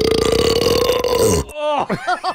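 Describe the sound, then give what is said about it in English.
A loud, deep burp, part of a game of guessing who burped, rumbles steadily for about a second and a half, rough and gravelly, then breaks into a few short, wavering voiced croaks before fading. “Guess who's mouth gas?”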